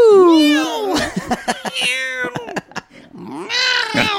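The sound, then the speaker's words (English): A person loudly imitates a cat, letting out drawn-out, wavering meows, with a few short clicky vocal sounds between the first meow and the final one. “Meow! Meow! Put your claw back in.”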